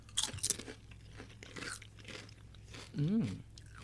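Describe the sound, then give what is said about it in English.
Sharp, crackly crunches of someone biting into a charcuterie board flavored kettle potato chip, a few loud bursts early on, then softer chewing, with a short voiced murmur near the end. “The charcuterie board chip.”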